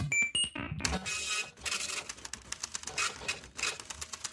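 A loud printer runs with a rapid mechanical clatter and whir, opening with a few high electronic beeps before the busy, rhythmic printing noise takes over.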